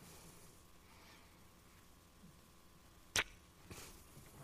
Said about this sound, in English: It is the full-on 4-foot-tall, 2-foot-wide shield that you shoved into the ground and your whole body got behind as the barrage of arrows came in and went brrrr.